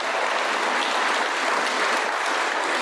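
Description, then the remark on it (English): A crowd applauds steadily at an Alcoholics Anonymous meeting, welcoming newcomers who came up to receive chips. Many hands clap in a dense, even wash of sound that holds at a constant loudness for about three seconds, with no voices standing out. “It's the only organization on the planet that'll give you an applause and a little gift for burning your life to the ground recently.”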